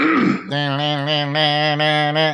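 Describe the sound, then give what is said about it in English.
A raspy throat clearing bursts out briefly, then gives way to a steady, sustained voiced hum for a couple of seconds, with no words spoken. “Give me 1 second. Let me clear my throat.”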